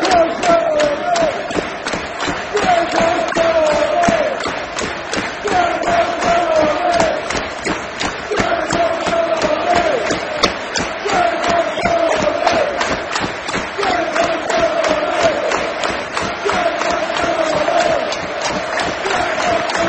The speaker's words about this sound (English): He's giving us applause. What a game, what an atmosphere.